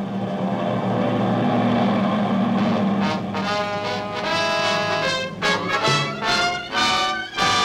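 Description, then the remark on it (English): A sustained, loud drone of many aircraft engines overhead, some 50 to 100 planes, a deep rumbling hum with layered harmonic tones that swell and waver, with no voices. “Do you hear that? Is it... Are those planes? There they are. 50. 100.”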